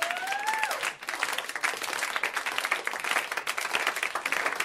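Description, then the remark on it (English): A comedy show crowd's slow clap bursts into dense, sustained applause that holds steady for several seconds, opened by a brief whistle-like tone that glides downward before the clapping fills in. “Who is going to start this fucking slow clap?”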